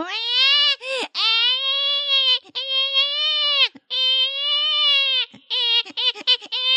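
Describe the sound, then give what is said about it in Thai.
Someone imitates a crying baby with loud, drawn-out wails, pausing briefly between them, then breaks into a few short, choppy sobs at the end. “จู่ๆจันทรสวามินเนี่ยก็รู้สึกว่าตัวเองเนี่ยหน้ามืดไปชั่วขณะวุบแล้วก็ได้ยินเสียงทารกร้องเสียงทารกร้องมาครับ”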